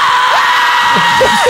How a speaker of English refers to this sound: And the pitch. Smith laced the ball down the line. The crowd is going wild.